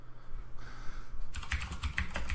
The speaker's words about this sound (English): yes, your mechanical keyboard is always awesome.